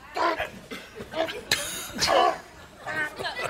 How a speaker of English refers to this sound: He coughs up the big chunk of meat.